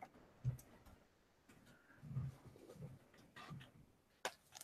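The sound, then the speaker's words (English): Quiet, irregular clicking of a Japanese computer keyboard being typed on while trying to enter a plus sign, a scattering of soft keystrokes with a sharper tap near the end, and no voices. “Japanese keyboard makes this difficult to get the plus sign in there.”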